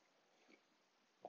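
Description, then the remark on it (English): Someone takes a quick sip of coffee: after a near-silent stretch with one faint soft noise, a short, slurpy burst arrives right at the end. No one speaks. “Here's a break before my question for a coffee sip.”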